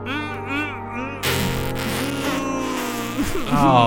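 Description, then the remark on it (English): A deliberately forced wet fart: a low, buzzy drone that breaks into a longer sputtering, hissy stretch, fairly loud and lasting several seconds, swelling slightly at the end. “It was a wet fart.”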